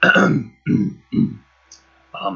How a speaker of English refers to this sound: And he comes up and gently waits until you are done watering and gets your attention by clearing his throat.